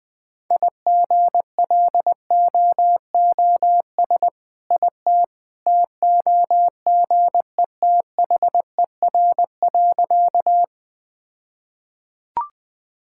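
A single steady mid-pitched Morse code tone keys out quick dots and dashes at about 20 words per minute for roughly ten seconds, then stops, leaving silence and one short click.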